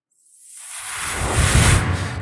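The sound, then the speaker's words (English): A slow gust of wind circling a room swells from a thin, airy hiss into a fuller, deeper rush, growing steadily louder over about two seconds. No voices are heard. “There seems to be like a slow gust circling the room that you're in.”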